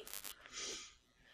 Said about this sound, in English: Sniffles.